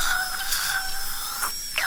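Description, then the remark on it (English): A dentist's drill whirs with a steady, high-pitched whine, its tone holding nearly level throughout, with brief hissy bursts of spray or air breaking in near the end. No voices. “while I was lying back in the dentist chair yesterday hearing all those sounds”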